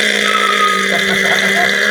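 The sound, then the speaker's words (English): A voice imitates the gun of an A-10 aircraft firing as the plane dives at a 45-degree angle: a loud, sustained buzzing drone held at a steady pitch for about two seconds, without pauses. “Yeah, those A-10s, they come down at a 45. When that gun goes off, the plane fucking stops in midair.”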